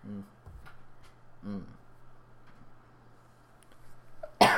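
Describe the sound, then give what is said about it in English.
Two short, voiced cough-like bursts about a second and a half apart, sounding more like a person mimicking a cough than a real one, followed by a sudden loud noisy burst at the end. “Cough, cough.”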